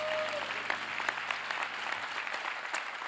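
audience round of applause

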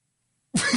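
cough

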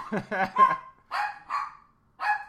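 dogs barking

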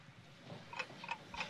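ticking

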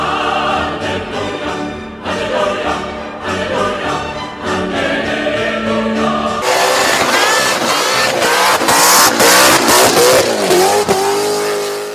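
rotary engine car revving

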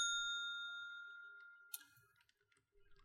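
bell being struck

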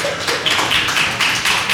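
a few people clapping

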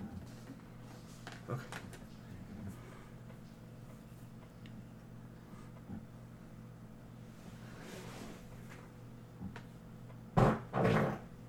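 door

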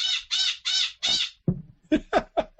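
crow cawing

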